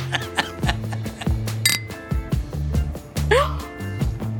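household object, glasses clinking

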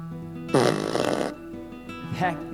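sound effect, fart machine noise

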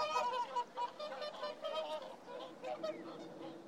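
bird, swans honking

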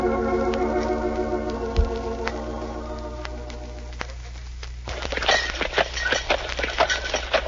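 animal, horse-drawn wagon hooves clip-clopping

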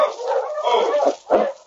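animal, dog barking

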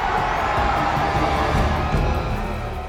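crowd, crowd cheering

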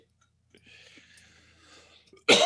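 human body sound, cough

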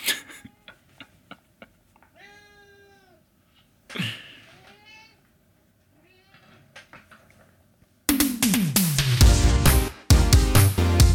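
animal, cat meowing

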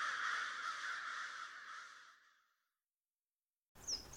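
bird, crows cawing

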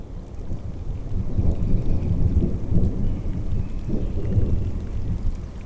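nature, rolling thunder

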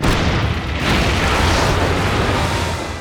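sound effect, cannon fire and explosion

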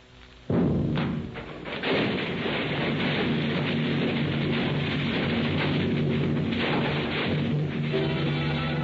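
sound effect, building explosion

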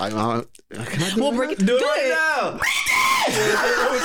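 human body sound, woman screaming loudly

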